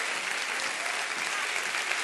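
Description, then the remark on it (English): An audience claps their hands together to thank God, in a steady, dense wash of applause that stays loud and even throughout, with many overlapping claps blending into a continuous crackling roar. “Why don't you clap your hands right now and thank God because of what He has done?”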